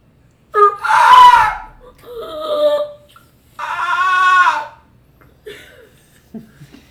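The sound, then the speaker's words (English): A voice imitates a screeching alien language: loud, harmonic shrieks and squawks in about four bursts, the first and third long and strident, with short trailing chirps at the end. “Oh, this is the language we're learning. Yeah. It screeches.”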